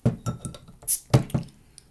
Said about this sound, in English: So I'm going to get my bottle opener out.